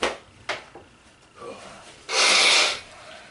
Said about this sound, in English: Like, I need to blow my nose right now. I had to already.